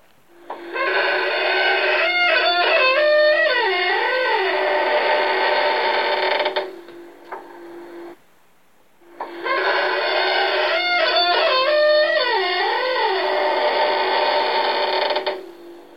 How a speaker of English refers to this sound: Try with a squeaking door.